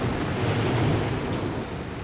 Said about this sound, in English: Outside, the wind still screamed and the rain splashed and splattered against our windows.